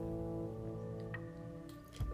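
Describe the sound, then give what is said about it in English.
A narrator reading aloud takes a quick sip of a drink: soft, wet mouth and swallowing sounds come in brief bursts near the end, faint over a steady, low harmonic hum with no talking. “I'm just going to take a quick sip here.”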